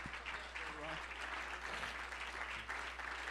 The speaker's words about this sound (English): Oh, come on, clap.